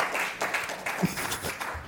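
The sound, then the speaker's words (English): A crowd claps together, a dense, steady patter of many hands at moderate volume that fills the whole short moment without a break. “I got people to clap.”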